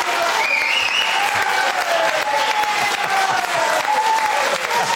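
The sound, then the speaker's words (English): Steady applause from a Blackpool crowd after praise of their town: a dense, loud wash of clapping that holds for the full five seconds, with faint cheering or whooping tones rising above it. “Clearly the crowd very much enjoyed seeing their town bigged up in the way that it was there.”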